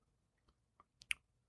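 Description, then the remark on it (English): Quiet chewing of juicy chicken tenders, crunchy outside and slightly chewy inside: a handful of crisp crunches and moist clicks, irregularly spaced, with the last two bites the sharpest. No one speaks. “They're juicy, they're slightly chewy and on the inside, but crunchy on the outside, which is what you want.”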